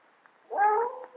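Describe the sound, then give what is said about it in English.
Monsieur Lamartine's dog, left alone upstairs, howls once, a sustained, wavering high-pitched cry that rises in after a moment of near silence and holds steady before fading slightly. No one speaks. “It's Monsieur Lamartine's dog upstairs. I've never heard him howl like that before.”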